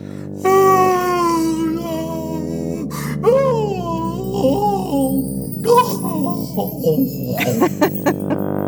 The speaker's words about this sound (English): Oh no, that was whale noise. All the whales are here. Back to the sea, whales. Back to the sea.